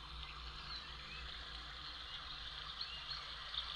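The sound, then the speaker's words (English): An alarm tone plays a steady, gentle babbling brook trickling continuously at low volume, with a few faint, brief bird chirps near the end. Nobody speaks. “It's a nice bird song and a babbling brook.”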